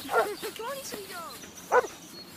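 A dog barks twice, a sharp bark at the start and another near the end, with high whiny yips and whimpers in between, moderately loud.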